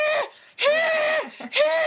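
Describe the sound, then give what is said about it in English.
A voice imitates a dog's scream-like honk: three loud, strained squeals, each a sustained harmonic cry separated by brief breaths, with no talking. “No, it's like, it's, but this isn't even a honk. It's like a scream honk.”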